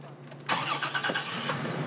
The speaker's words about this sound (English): To get a better sense of the challenges ahead, Salgado and I hopped in his pickup truck and drove into the burn scar.